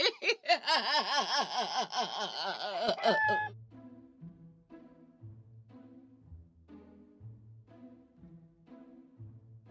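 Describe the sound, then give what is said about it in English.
A rooster crows loudly for about three seconds in a wavering, drawn-out call, then gives way to quieter, repeating low clucks and murmurs. “Well, cockle-doodle-doozy. When did the firebird turn into the funky chicken?”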